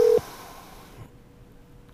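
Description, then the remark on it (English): A single short, steady electronic telephone tone sounds for a split second as a call is placed to a show guest, then cuts off, leaving only a faint low hum with no one speaking. “we are going to see if he'll pick up the phone, which is always fun.”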